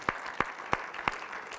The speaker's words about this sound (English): I want you right now to stop and go ahead and give the Lord a clap offering for his goodness. Go right ahead. Go right ahead.